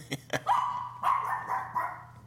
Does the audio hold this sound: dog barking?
yes